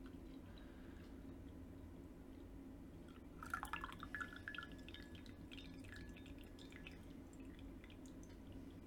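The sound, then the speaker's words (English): Green tea (sencha) from a second brewing of about 15 seconds is poured into a cup in a short trickle lasting a couple of seconds, its pitch rising as it fills, over a steady low background hum with no talking. “And what is nice now, you have the leaves open, just do it for 15 seconds and then you can pour the tea.”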